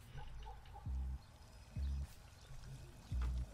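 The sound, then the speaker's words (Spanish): Water pours steadily from the breasts of fountain statues in a continuous, moderately loud rush, with three brief low pulses recurring about every second underneath; no one speaks. “Ay, Dios mío, pero las estatuas están botando agua por los senos.”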